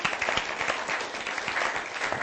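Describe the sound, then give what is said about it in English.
An audience claps steadily for a woman, a dense wash of many overlapping hand claps with fairly even loudness throughout and no voices over it. “Let's give her a clap and just appreciate it.”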